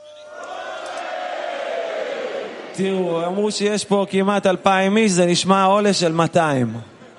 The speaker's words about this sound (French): Donc quand je lève les mains, on va crier comme déjà nos chers amis d'Amérique du Sud.